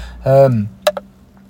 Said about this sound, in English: I just had a drink of water. That was really rude of me, sorry.